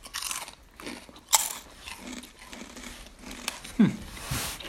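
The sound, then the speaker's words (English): Loud crunching of Doritos 3D Crunch Spicy Ranch corn chips being bitten and chewed, with sharp crackly bites and a steady run of munching over several seconds, no speech. “Doritos 3D Crunch Spicy Ranch.”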